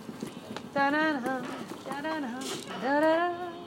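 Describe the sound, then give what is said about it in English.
Feet stomp on a floor after leg lifts during a seated chair exercise session, a quick run of thumping, clip-clop-like beats, while a voice carries on over the top of them. “Stomp it out.”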